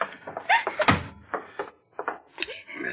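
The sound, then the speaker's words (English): A door is pushed shut with a single solid thud near the middle, surrounded by brief bits of voices and shuffling movement. “All right, get the door.”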